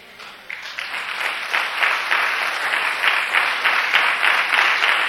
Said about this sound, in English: Come on, give a good clap offering. Hallelujah. This is for you, Lord.